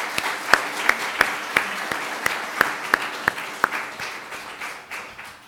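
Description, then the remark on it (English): An audience applauds SPU students steadily, a dense wash of clapping with sharper, louder individual claps popping out at fairly regular intervals, gradually thinning toward the end. “Let's give our students, amazing SPU students, one more round of applause.”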